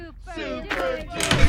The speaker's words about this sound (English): Can you hear the crowd? It's so cool. All cheering for me.